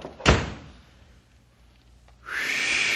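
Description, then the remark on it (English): A door slams shut with one sharp, loud bang, then quiet, before a steady, airy whistling hiss rises and continues to the end. “the door.”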